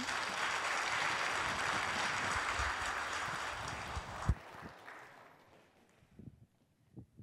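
A church audience applauds as a guest speaker is invited up, a steady, dense wash of clapping for about four seconds, then it drops off sharply and trails into a few scattered claps and faint rustling.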